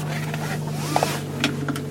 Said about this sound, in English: I'm driving my car. Just before lockdown, my car decided to have a flat battery.